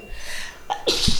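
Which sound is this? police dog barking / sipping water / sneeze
sneeze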